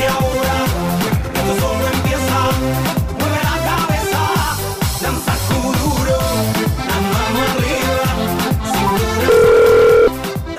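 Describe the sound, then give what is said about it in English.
A telephone rings on an outgoing call, its repeated electronic tones layered over busy, music-like sound, with a steady, louder beep near the end. No one speaks. “Will he hear this when he picks up the phone?”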